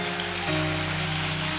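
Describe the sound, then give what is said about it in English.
An audience claps their hands in celebration in a dense, steady wash of applause that never lets up, with sustained musical tones holding underneath and no voices. “Come on, clap those hands and celebrate what God is about to do.”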